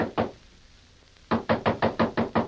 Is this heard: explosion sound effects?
no